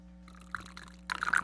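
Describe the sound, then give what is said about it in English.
Coffee from a roaster in New Albany pours into a cup in a short stream, starting with a faint splash and swelling into a brighter, louder gurgle toward the end, over a low steady hum. “Pouring my coffee in the cup from High Point Roasters in New Albany.”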